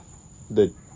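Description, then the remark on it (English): A single short cluck from a running chicken rises briefly out of a quiet background with a faint steady hum, moderately loud. “The chicken is now running.”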